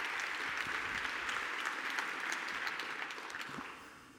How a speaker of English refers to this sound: A round of applause for City. Thank you.